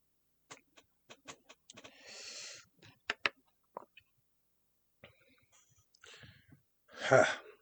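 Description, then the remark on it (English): Scattered sharp pops and gurgling clicks like water bubbling, mixed with breathy rasps, then one loud, harsh cough near the end. No one speaks. “You heard coughing. You heard bubbling.”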